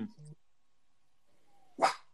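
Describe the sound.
The speaker's own female dog lets out one sharp, loud bark, following a brief fragment of a voice and a short quiet pause.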